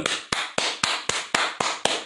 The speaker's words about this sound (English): Give yourself a hand clap, fellas. Let me clap for you.